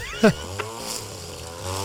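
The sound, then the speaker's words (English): A weed whacker drones with a steady, low buzzing hum throughout, briefly interrupted near the start by a short, sharp, falling vocal-like burst. “weed whacking.”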